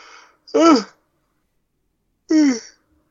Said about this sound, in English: Sorry, there was a yawn break there.